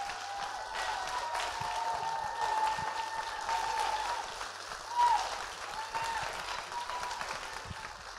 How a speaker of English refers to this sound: Give Brandon another clap.